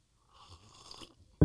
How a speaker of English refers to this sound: A little bit of honey, a little bit of mint. Could have been this caffeine. That's true. I'm alert now, cuz. Ooh, good sound. Now you do it, Just a little slurp.